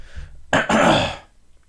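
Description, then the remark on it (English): A single loud throat clearing: a sharp rasping onset, a brief catch, then a longer guttural scrape that fades out, with no talking. “Sorry, I had to clear my throat.”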